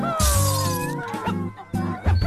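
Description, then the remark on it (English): A window smashes with a loud crash as animals burst through it into a room, and glass fragments keep clattering and ringing for a couple of seconds, ending in a second burst of breaking glass. “Then they burst through the window into the room so that the glass clattered.”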